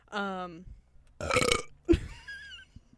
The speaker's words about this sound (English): That was my Taco Bell burp from earlier.